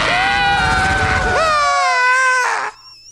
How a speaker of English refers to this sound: Listen to that scream. Listen to the scream. It's so good.